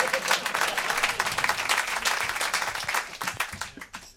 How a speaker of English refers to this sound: There's a lot of them, so keep clapping.